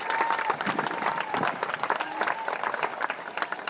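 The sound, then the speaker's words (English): A large, enthusiastic crowd at a Texas Democratic Party voting-rights rally applauds steadily and loudly, dense clapping filling the whole stretch with cheers and scattered voices mixed in throughout. “You could say it's an enthusiastic crowd.”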